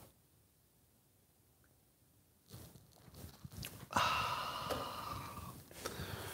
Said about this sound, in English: Fill it with your favorite liquid. I like coffee. Enjoy me now for the unparalleled pleasure, the dopamine hit of the day, the thing that makes everything better. It's called the simultaneous sip. It happens now. Go.